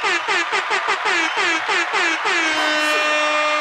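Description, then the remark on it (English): A loud, blaring air horn sounds in a rapid series of short, stuttering blasts, then holds into one long sustained honk to finish. “But that just changing that junk like that, hit the air horns for that one, bro.”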